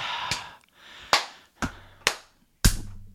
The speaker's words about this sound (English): I'm clapping for you. Oh, I am clapping as well.